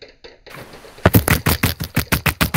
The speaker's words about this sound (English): why were you hitting your keyboard?